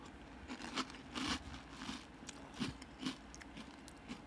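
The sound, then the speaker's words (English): Crunching of dry O-shaped peanut butter cereal being chewed from a clear bowl, a steady series of crisp, irregular bites and crackles with no talking. “Crunchy. I get some peanut butter on the back end.”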